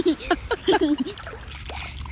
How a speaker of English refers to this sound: So I'm just coming out of the water after my final swim, and I had to come out because the tide was going out and it was getting too shallow to swim in.